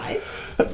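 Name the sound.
sneeze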